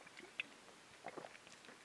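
Quiet mouth sounds of someone sipping a Monster energy drink: soft wet clicks and small slurps scattered over a couple of seconds, with no talking.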